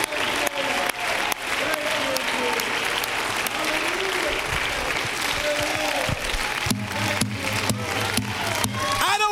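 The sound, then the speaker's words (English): An audience in a church sanctuary claps hands unto the Lord in praise, a dense, continuous burst of applause, with voices and a low sustained musical tone running underneath throughout. “Clap your hands unto the Lord and shout with the voice of it.”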